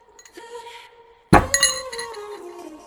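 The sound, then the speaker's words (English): A water bottle is set down hard on a table, giving one sharp, loud knock with a short bright ringing tail, preceded by faint handling clinks. “you need to stop picking up your water bottle and putting it down on the table.”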